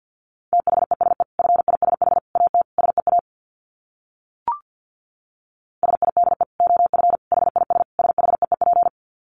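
Fast Morse code at 50 wpm: a steady mid-pitched beep keyed in rapid short bursts, two runs split by a pause with a single brief blip, and no voices.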